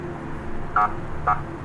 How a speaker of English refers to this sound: I love that because it is what the cop car does, you know, when it pulls up, typically.